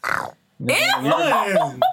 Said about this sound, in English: That sound like a dry fart.